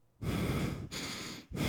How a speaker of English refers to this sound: No. I hear you breathing in the mic. Sorry.